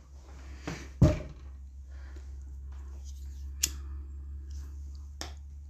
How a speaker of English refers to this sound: Sorry, I had to bang on the wall. The cat was scratching on the damn door frame again.